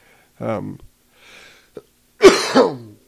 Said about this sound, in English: I'm sorry, I'm trying to not cough. I realize I kind of sound like a cat kind of trying to hack something up or something.